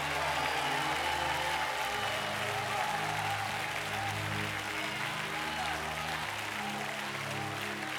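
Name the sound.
audience cheering and applause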